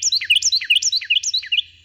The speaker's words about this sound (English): When a Carolina wren tips back its head and sings, something remarkable happens. A Carolina wren can sing so loudly that you almost have to shout to be heard over its song.